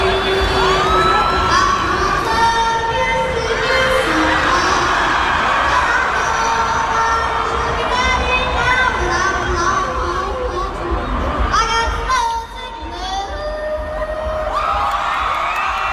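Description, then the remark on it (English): A loud festival crowd at Coachella cheers and screams wildly at the end of the Walmart yodeling kid's Friday afternoon set, with high-pitched shrieks and whoops layered over a dense, sustained roar that dips briefly before surging again. “The crowd went so insane, cute.”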